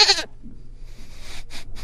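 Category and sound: animal, goat bleating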